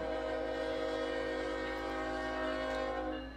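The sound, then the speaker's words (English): An intermodal freight train carrying container and trailer traffic from North Bergen, New Jersey, rolls into Jacksonville, its horn holding one loud, steady multi-tone chord throughout over a low rumble of the moving train. No one speaks. “Rolling into its Jacksonville destination was QO31, container and trailer traffic out of North Bergen, New Jersey, with some picked up along the way in Baltimore and Savannah.”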